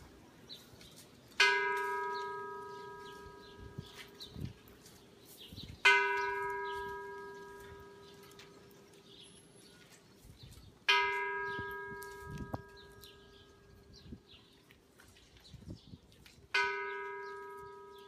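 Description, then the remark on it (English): At a ceremony, a bell is struck four times in slow succession, each ringing tone sustaining and fading before the next strike, with faint background noise and occasional bird chirps. “and then they can ring the bell one after another.”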